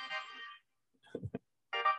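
A smartwatch rings with an incoming call during a meeting: a bright, buzzy electronic ringtone in two short bursts separated by a pause, with a couple of dull low thumps in between. Moderately loud, no talking.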